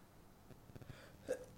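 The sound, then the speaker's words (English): A single short, faint sneeze bursts out near the end after a stretch of low, muffled rustling, with a brief voiced tone and a hissy breathy edge. “God bless you. Again. Another one.”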